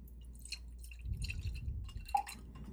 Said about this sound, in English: This is Blenheim Vineyards in Charlottesville, Virginia. And this is their wonderful, wonderful wine, Riccazzatelli. It's a white wine, really crisp, wonderful, while you're talking about Puccini. So hold on a second while I pour myself a glass.